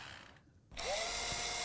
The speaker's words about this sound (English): A drill.